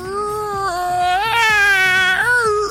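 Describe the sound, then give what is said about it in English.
A voice imitates a big, creaky, dusty book opening with one long, drawn-out, whining creak whose pitch wavers up and down, held steady and fairly loud for nearly three seconds with no talking. “So let's now open a big, creaky, dusty book.”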